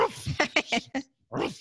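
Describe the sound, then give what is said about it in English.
A person's voice imitates a dog barking: a quick series of short, gruff yaps followed by a brief pause and one longer, rougher growling bark, fairly loud. “And I remember one morning the dog giving out to the manager.”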